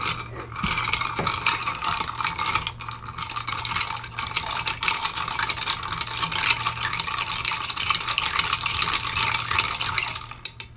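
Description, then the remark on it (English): A clear cocktail of 1 ounce each of peppermint schnapps, white creme de cacao and vodka being stirred in a glass. Ice clinks and rattles in a rapid, continuous patter for about ten seconds, steady and fairly loud over a low hum, with no talking. “So give us a stir.”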